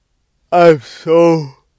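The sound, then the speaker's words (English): A single drawn-out yawn: a voiced groan, a breathy intake in the middle, then a longer sighing tone that falls in pitch and fades out. No other sounds around it. “I'm so sorry for yawning.”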